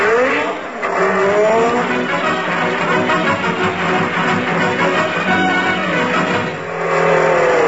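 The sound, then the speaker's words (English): A car roars away at speed, its engine revving up in rising sweeps while tires squeal, loud and continuous for several seconds with no voices. “I don't know why these drunken drivers...”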